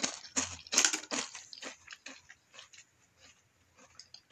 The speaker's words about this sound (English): All right, no more. I'm not going to chew anymore.